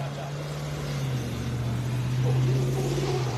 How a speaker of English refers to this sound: And we got some trucks coming out.